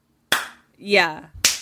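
Two sharp hand claps about a second apart, with a short voiced vocal sound with falling pitch between them.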